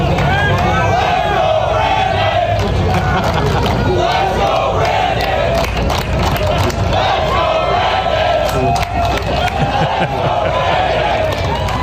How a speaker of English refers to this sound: They had a golf tournament there. And people like Tucker Carlson and Marjorie Taylor Greene and Caitlyn Jenner, of all people, were up there with him. And the crowd at one point decided to chant that ever so popular chant.